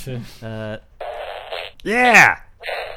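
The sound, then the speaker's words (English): Two loud fart sound effects from a soundboard in quick succession, the first buzzy and sputtering, the second a rising-and-falling squeaky blurt, followed by a short muffled rasp. “This fart soundboard has like 60 different farts.”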